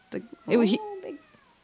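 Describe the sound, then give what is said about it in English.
A loud meow from the cat Beans with a rising, wavering tone, followed by a shorter, softer mew; brief breathy sounds come before and after. “Big cat meow just now.”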